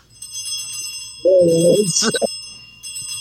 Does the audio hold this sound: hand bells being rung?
yes